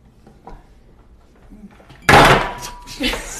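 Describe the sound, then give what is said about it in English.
After a quiet stretch, drinking glasses are suddenly knocked over by someone reaching to hand over a phone, in a loud clatter that rings on briefly, followed by a second smaller clinking burst a moment later. “Keith was going to hand me my phone, knocked over some glasses.”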